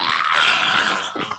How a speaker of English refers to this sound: So, as you go to grab to eat it, you start to hear a screech sound.